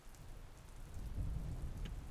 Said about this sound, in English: the sound of thunder and lightning. But you are not afraid. and you can hear rain.